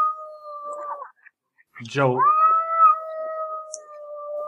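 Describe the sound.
A person says a single drawn-out word, a name pronounced with a stressed 'ow' sound, pauses, then imitates a cat's meow: one fairly loud call that rises sharply and stretches into a long, steady wail.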